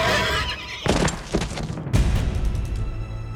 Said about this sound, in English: Theseus rose and lunged toward the centaur who held Hippodamia, plunging a knife into the horseman's chest. The centaur neighed in agony and collapsed.